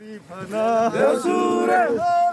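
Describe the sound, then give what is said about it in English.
A group of young Nepali men shout a war cry together in their native language while marching toward the front line in Ukraine, recorded on video, loud and sustained, their voices rising and falling in strong, ringing tones for a couple of seconds. “Marching towards the front line of a foreign conflict, a group of young Nepali men cheer each other with a war cry in their native language.”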